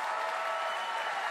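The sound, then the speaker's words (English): A crowd claps steadily, a dense wash of many hands applauding at even volume throughout, with no voices standing out above it; the applause is for audience members who have served in the military. “Can you guys give them a round of applause?”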